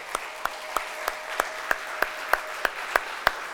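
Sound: audience applauding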